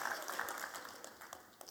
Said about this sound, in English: So, Roscuro and Despero save the princess. Let's have a cheer. Yes.